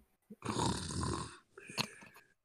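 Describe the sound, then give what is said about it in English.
A person makes a loud, rasping snore sound with their voice: one long, throaty inhale lasting about a second, followed by a shorter, breathier exhale with a whistle-like hiss at the end. “Cultists A and B are snoozing.”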